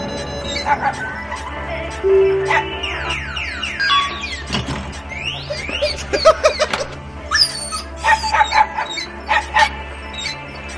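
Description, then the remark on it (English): A dog whines in high, thin cries that slide up and down, interrupted by quick yips, repeating throughout over a steady low hum. “See, I'm old, so I can't hear any of that high-pitched whining from the dog.”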